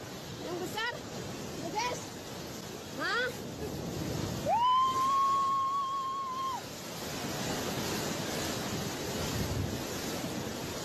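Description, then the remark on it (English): A massive tsunami wave surges onto a beach in a foreign country, filmed on a phone by a woman, with a constant roaring rush of water and wind buffeting the microphone, while faint voices cry out and one long high-pitched scream rises over the noise. “But she's videoing herself with a massive threatening wave coming to her.”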